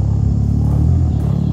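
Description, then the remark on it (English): A male gorilla hums in the middle of a meal, a deep, rumbling drone with layered low tones that stays loud and continuous throughout, sounding almost like an idling engine. “What it really is a gorilla, a male gorilla humming in the middle of a meal.”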